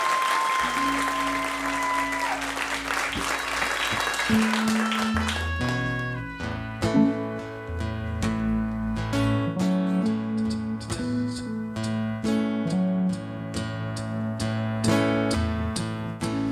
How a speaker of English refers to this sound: So let's give Keegan-Michael Key a warm round of applause as he makes his Joe's Pub debut.